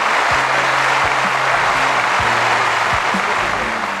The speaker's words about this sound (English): Applause for the ….